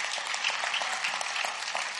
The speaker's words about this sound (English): All right, you can clap because I'm saying it.